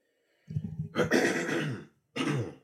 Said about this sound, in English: Sheesh. Clearing my throat a lot today.